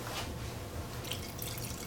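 A shaken drink poured into a glass, a steady trickle and splash of liquid running continuously for a couple of seconds with no one speaking.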